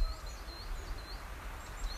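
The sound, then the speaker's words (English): Faint birdsong of a dawn chorus: scattered high, thin chirps and short trills from several birds over a steady low rumble and soft hiss, with no voices. “And at some point during their evolution, birds began to sing.”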